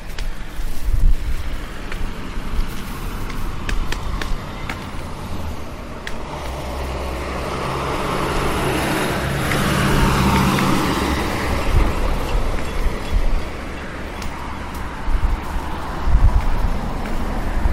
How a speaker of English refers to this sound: Okay, we are here at the corner. As you can hear, a little bit of traffic today.